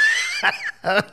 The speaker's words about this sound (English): That was Stacker 2, Big Show's fart.